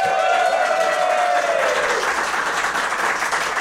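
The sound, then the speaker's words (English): A show's audience applauds steadily when asked how many have heard the show before, dense clapping filling the whole few seconds at a loud, even level, with a brief whistle or cheer tone near the start before the clapping carries on. “How many of you, a round of applause, how many of you have heard the show before?”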